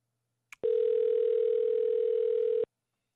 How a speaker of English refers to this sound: Phones are ringing. No one's answering.